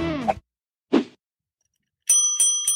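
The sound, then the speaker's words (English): A short bicycle-style bell, rung by a man with his nose, rings three times in rapid succession with a bright sustained tone, following a brief vocal sound and a dull knock earlier. “just did the bell with his nose.”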